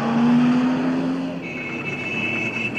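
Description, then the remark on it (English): Busy city road traffic in Nairobi with a steady roar of engines as cars pass, a low motor hum giving way to a higher whine partway through. No voices. “So it was very quickly used as a way to avoid travelling across the horrendous traffic of Nairobi to pay for goods or send money to a friend.”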